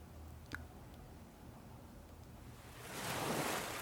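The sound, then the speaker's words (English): Ocean surf washes steadily against the shore in the background, a low rushing hiss, then a wave swells and breaks louder near the end. No voices are heard. “Now imagine the waves of the ocean crashing against the shore in perfect rhythm.”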